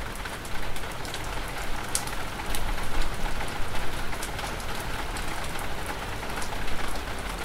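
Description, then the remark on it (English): Steady rain pattering on a surface, a dense continuous hiss with scattered sharper drops ticking through it, even in loudness throughout. “I place the rain in front of my eyes.”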